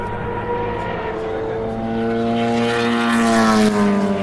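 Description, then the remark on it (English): A race car with a Judd BMW engine roars past, its loud, steady harmonic drone swelling closer and then dipping slightly in pitch as it goes by. “That's a Judd BMW engine.”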